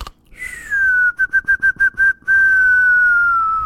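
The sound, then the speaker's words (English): A person imitates a whistling snore: a steady high whistle, then six quick pulsing toots, then one long whistle that slowly sinks in pitch, with no talking. “That would be a good snore. That's a snore that I wish I had.”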